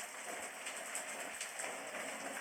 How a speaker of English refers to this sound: And as you see that energy getting closer and closer to you, you can see all of the rain now pouring down around you. You can hear the thunder.